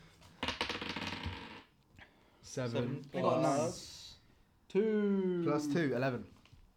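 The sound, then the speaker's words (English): A quick burst of dice clattering and rattling across a hard tabletop, about a second long, followed by people talking. “Roll it again. Don't roll it on the fucking paper.”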